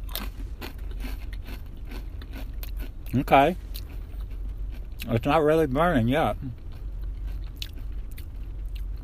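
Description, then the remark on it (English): Repeated crisp crunches of someone biting and chewing a chip topped with ghost pepper sauce, a steady run of short sharp clicks, with a person speaking briefly in between and over the chewing. “I have the ghost pepper sauce on the chip.”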